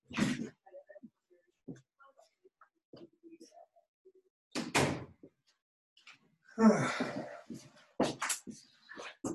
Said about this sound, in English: I'm going to just close the door.